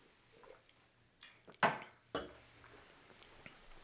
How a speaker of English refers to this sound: hold on, I gotta take another sip before I say this. Hold on.